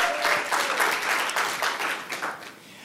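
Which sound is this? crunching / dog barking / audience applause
audience applause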